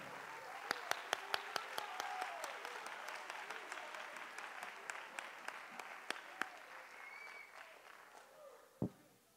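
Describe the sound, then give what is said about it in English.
A church audience claps hands in praise to the Lord during a morning service: sharp repeated slaps forming a steady rhythmic applause over a murmuring, reverberant wash, with a few voices faintly calling out and a louder thump near the end. “Come on, clap your hands unto the Lord this morning.”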